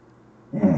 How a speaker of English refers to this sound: Alright, what he said, what my dog said.